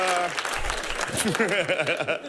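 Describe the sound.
An audience breaks into a burst of steady clapping after a man mentions his family opened a coffee shop in his hometown for people with Down syndrome to work at, with the man's voice starting to talk over the applause partway through.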